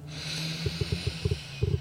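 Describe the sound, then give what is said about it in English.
A long, steady breath drawn in through the nose during a deep breathing exercise, an airy hiss lasting nearly two seconds, fairly quiet, with soft low thumps pulsing faintly underneath toward the end. “Go ahead and inhale. Count to 4.”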